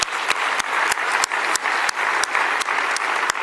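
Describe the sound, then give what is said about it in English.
A steady round of applause from a convention audience for the authors of a research paper, dense clapping filling the whole stretch at an even loudness, with a few sharper individual claps popping out at regular intervals. “So when it comes to the, so actually let's just give them a round of applause.”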